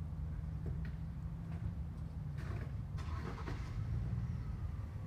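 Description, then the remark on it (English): Low engine rumble from cars pulling out of a parking lot, a steady drone with a few brief rising revs and whooshes as vehicles move off. “You can hear the cars leaving now. They're in the parking lot.”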